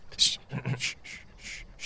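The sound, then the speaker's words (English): A voice acts out a sharp, breathy gasp, followed by a few more airy intakes of breath and a brief murmur, a performed startled reaction. “Lets out a gasp, and like, she's just got things in her hands, like hairbrushes and pieces of clothing, a purse.”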